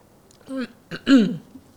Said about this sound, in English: So, I need some coffee. Some coffee. I'll take a sip too.